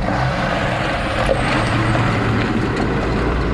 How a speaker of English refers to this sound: Here in Nueva Loja, in eastern Ecuador, close to the Colombian border, trucks hit the gravel roads 24 hours a day to speed up construction of an OCP pumping station.